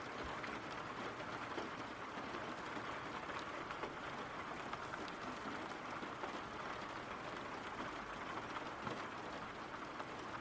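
Steady rain falls without pause, a dense, even hiss of countless drops spread across the full range, holding at a constant moderate level with no voices or other sounds.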